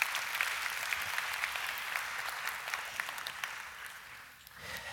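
A crowd claps steadily, producing a dense, crackling wash of many hands that holds for several seconds before thinning out and fading near the end.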